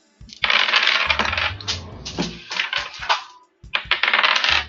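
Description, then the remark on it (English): Dice clatter and skitter over a hard surface in a long bright rattle, with a brief pause before a final burst of tumbling clicks as one die goes clear across the room. No one speaks. “I got one. And one die went clear across the room. Sounded like it.”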